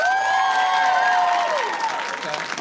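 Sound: audience applause and cheering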